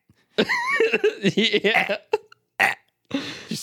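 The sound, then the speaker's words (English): A voice imitates a burp, a drawn-out croaky belch, loud, followed by two short throaty bursts after brief pauses. No speech. “And those, just the fake burps too.”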